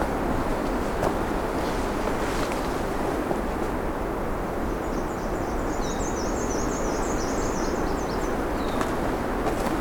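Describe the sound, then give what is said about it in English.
A myrtle warbler's faint, high, thin trill of rapid chirping notes runs for a few seconds midway through, over a steady roar of wind noise. “Something else singing here, and I don't know precisely what it was. I think it was a myrtle warbler.”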